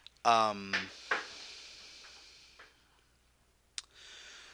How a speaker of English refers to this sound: I don't know what that was. It's like a knocking or something.